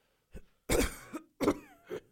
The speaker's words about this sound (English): Oh, the Nasty Boys are giving... The Nasty Boys are giving me a bit of a cough here. Looks like I might have to go and talk to my doctor.